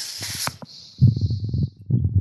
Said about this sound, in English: Do you hear the typing? Yes, because you have a Model M keyboard.